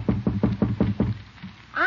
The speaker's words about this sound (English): Little Leroy is just knocking on his uncle's door, and by the tone of his voice, he's trying to get out of something.